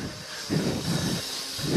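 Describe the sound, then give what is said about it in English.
A man uses a power saw to cut out pavement, beside a road during a run. The saw makes a loud, harsh hiss that stays steady while its lower rumble surges in roughly regular waves. No one speaks. “There's a man cutting out the pavement.”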